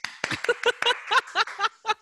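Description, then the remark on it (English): One person clapping alone while sheltering in place, about nine moderately loud claps in a quick, fairly steady rhythm, with a light laughing voice mixed in among them. “But it's just me clapping since it's, we're still sheltering in place, isolating, whatever you want to call it.”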